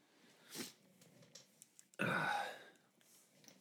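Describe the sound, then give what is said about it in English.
A short sniff, then a loud, forceful blast of air snorted out through the nose without a tissue, a wet, noisy snot rocket lasting about half a second, with no talking. “I'm just gonna fucking snot rocket on my own ass, I guess.”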